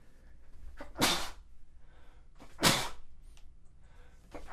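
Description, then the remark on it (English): Two loud sneezes about a second and a half apart, each a sharp burst with a breathy hiss, set against quiet background noise. “Oh, man, have I sneezed on the podcast before?”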